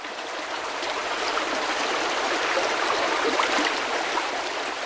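A pristine mountain creek in the Kootenai Mountains of British Columbia gurgles and rushes steadily through a snow-crusted forest, a continuous bright wash of flowing water, with no voices or other sounds over it.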